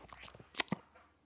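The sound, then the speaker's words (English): A chair creaks in two quick crackly bursts, the first sharp and bright, the second duller and lower, with faint rustling before and quiet after. No one speaks. “oh, it's my chair making that noise.”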